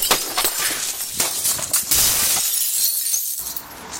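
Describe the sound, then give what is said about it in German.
A car window is smashed with an emergency hammer to take a laptop bag and a navigation device from the back seat: a sharp crack followed by several seconds of bright, crunching glass shards tinkling and scattering, loud and with no voices. “Ey, und zum Glück hab ich aus der Bahn eben den Nothammer geklaut. Hol die Sachen aus dem Auto raus und mach mich aus dem Staub.”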